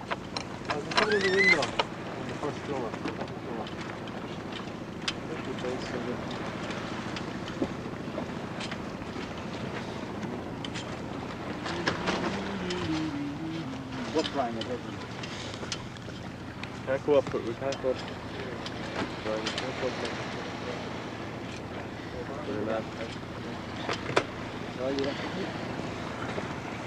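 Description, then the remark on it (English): A sailing yacht crossing a race line, moving through the water, with steady rushing wind buffeting the microphone and a continuous wash of water along the hull, while indistinct voices talk and another boat comes up on its stern. “This boat just coming up on our stern.”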